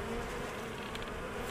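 A dense, steady buzzing of many honeybees pouring out of the first hive as its seal is removed on arrival at a new farm, at dusk in freezing weather around zero degrees, a continuous droning hum with no pauses and no voices.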